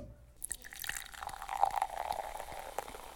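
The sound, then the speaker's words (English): A cork pops, then liquid pours steadily into a glass, the gurgling rising in pitch as it fills. Fairly quiet, with no voices. “Cork popping counter thing.”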